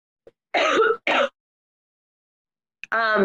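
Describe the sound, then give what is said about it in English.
A woman coughs and clears her throat in a few short, harsh bursts, two quick ones together, then a pause before a longer, raspy throat-clearing. “Yeah, she's coughing.”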